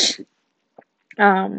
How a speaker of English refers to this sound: God, I'm sorry, you guys. I keep sniffing and oh, miserable.